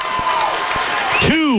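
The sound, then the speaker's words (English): A basketball crowd applauds and cheers in a steady, loud wash of noise during the final seconds of the Badger East Conference Championship game between Beaver Dam and Monona Grove, with a few dull low thuds and a rising squeak near the end. “And you hear the applause in the background.”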